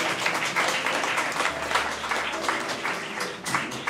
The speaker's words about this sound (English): Eight centuries late, but he appreciates the applause.